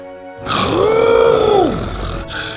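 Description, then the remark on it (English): A person imitates an excited T-Rex roar: a single loud, drawn-out growling cry that swells, rises in pitch, then falls away over about a second and a half. “The T-Rex let out an excited roar.”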